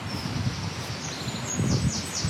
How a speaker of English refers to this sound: Just dropping a bit deeper into the woods now, beneath some oak trees and a few more sycamores again. Wind whistling through the trees.